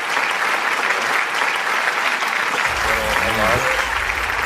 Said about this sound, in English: You know, I think that deserves a round of applause right there. That was pretty good.